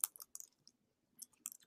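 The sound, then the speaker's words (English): Soft, quick clicks of typing on a computer keyboard, coming in two short bursts separated by a pause, quiet with no voices. “And I'm typing as you're talking.”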